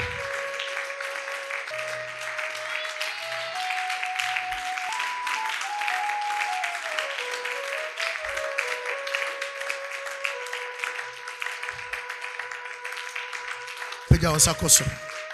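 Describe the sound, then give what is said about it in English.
A church audience claps steadily and continuously for people invited to come forward for prayer, while a sustained organ-like tone shifts slowly in pitch underneath, ending with a brief louder burst of sound. “Keep clapping for them.”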